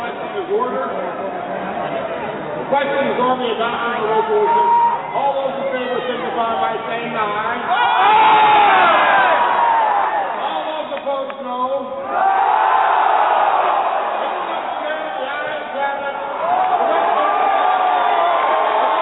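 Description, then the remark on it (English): A large Republican convention crowd of conservatives shouts and jeers in protest against a party rule change vote, a dense roar of many voices swelling and surging in waves, with scattered louder yells rising above the din. “a change that he claimed was approved despite the shouts of conservatives against it.”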